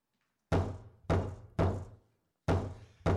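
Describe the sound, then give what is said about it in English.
Five heavy knocks on a wooden door, loud, coming in an uneven rhythm: three quick raps, a pause, then two more. “Is there anybody there to answer the door?”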